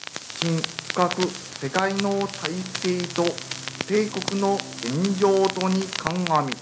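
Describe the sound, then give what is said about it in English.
Dense radio static crackles and hisses steadily throughout, with a muffled, distorted voice faintly breaking through the noise now and then, as a radio in Japan is tuned in for a 12 noon announcement nine days after the bombing of Hiroshima. “They tuned in. At first, it was just static.”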